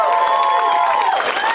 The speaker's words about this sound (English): Put your hands together. And we have a ton of amazing comics on the show, and you should give them a round of applause because they can hear you in the back.